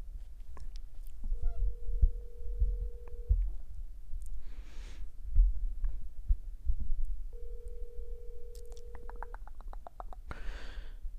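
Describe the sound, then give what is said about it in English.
A phone call's ringing tone from an outgoing call to a friend, not yet answered, sounds twice, each a steady mid-pitched drone lasting about two seconds with a long pause between, over low thumping and rustling noise. “And it is still ringing.”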